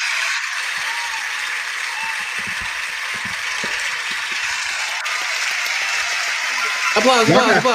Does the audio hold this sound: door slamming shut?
no